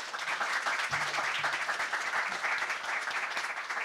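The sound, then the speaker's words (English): Steady crowd applause for a panel of speakers, a dense wash of many hands clapping at once, holding an even level throughout with no voices rising above it. “All right, a round of applause for our panelists.”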